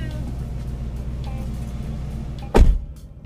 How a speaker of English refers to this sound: What the hell was that? Oh, it's this car. You know, oh. The cars that are big and have loud noises.